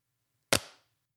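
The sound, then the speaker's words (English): A single crisp magnetic click as a Surface keyboard snaps onto its magnetic connector, sharp and bright with a quick decaying tail, heard alone over a faint low hum. “The first time we showed the Surface to the team that would lead creating television commercials, they immediately connected with the click sound the engineering team worked so hard to get right.”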